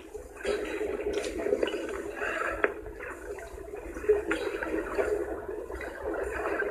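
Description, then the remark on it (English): Muffled underwater sloshing and dull thumps of waves slapping against the bottom of a boat hull, picked up by a hydrophone lowered into about 20 meters of water. A continuous murky wash with occasional sharper knocks, steady with no voices. “You can hear the waves just hitting against the bottom of the boat.”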